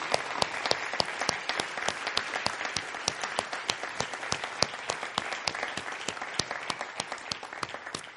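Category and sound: crowd, round of applause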